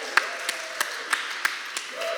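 Steady, evenly spaced handclaps, about seven in two seconds, sound at moderate volume while faint voices murmur underneath, more like a few people clapping than a full burst of crowd applause; they applaud the worship leader after worship at church.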